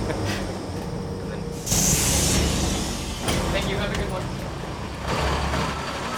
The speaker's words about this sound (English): Oh, and unfortunately our bus has stopped in the middle of a bike lane, because that's the way that it's designed